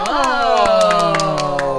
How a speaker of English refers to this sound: Oh. Oh, golf clap. Yes. It's a podcast, so you can't really clap.